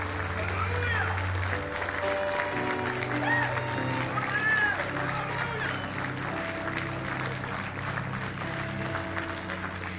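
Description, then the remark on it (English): A church audience claps and applauds steadily for about ten seconds as a clap offering to God, a dense, sustained patter of hands with voices calling out and a low musical drone underneath. “And I want to ask you, in the Holy Spirit, to give God a great big clap offering and let him know we want the power of the Holy Spirit.”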